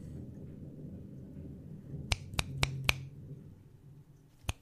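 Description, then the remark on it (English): A low, steady rumble of a gathering crowd murmurs throughout, broken midway by four quick sharp snaps in a row and two more at the end. “I can hear the rumbling of the crowd gathering.”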